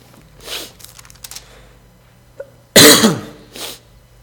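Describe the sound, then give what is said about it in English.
A few soft throat-clearing noises and a small click, then one loud, harsh cough, followed by a quieter second cough, from a preacher with a chest cold before a sermon. No one speaks. “I seem to have the chest crud like everybody else, so I'll be hacking and coughing and sipping on water all throughout the sermon.”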